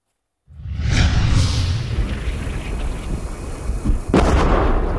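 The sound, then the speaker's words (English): A loud, close explosion bursts out of silence and rolls into a heavy, sustained rumble, followed near the end by another sharp, close blast, on a Ukrainian front line as a drone team from the 92nd Assault Brigade sets up its drone and attaches bombs. No one speaks. “The explosions are dangerously close as the drone team from the 92nd Assault Brigade set up their bird, attach the bombs, and head off into battle.”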